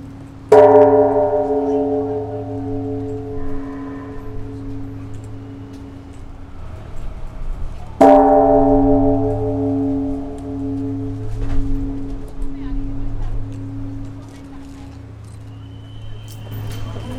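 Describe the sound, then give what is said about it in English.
A large memorial bell is struck twice, about eight seconds apart, each single toll ringing out loudly and humming as it slowly fades, over a low background rumble; attendees ring it individually after a memorial service to honor victims of a tragedy. “After the service, then the attendees were coming out here and to ring the bell to honor those who passed away by ringing the bell individually.”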